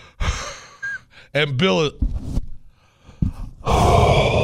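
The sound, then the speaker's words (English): Heavy, noisy breaths come through a phone line, several loud inhales and exhales with a brief voiced moan-like sound between them, close and slightly harsh. “is breathing in”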